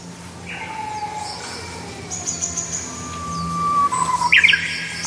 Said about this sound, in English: And he'll get his buddies answering or her friends answering, and it's just the hills are alive. They're alive with the music of the Japanese bush warbler.